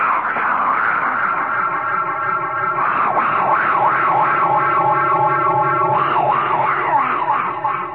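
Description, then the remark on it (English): A human voice makes a 'fungus noise' on WOR radio in New York: a strange, sustained droning noise that swoops into warbling, wavering pulses, loud and continuous for several seconds, soaked in heavy echo-chamber reverb. “And would you give me a little echo chamber? I want to make my fungus noise.”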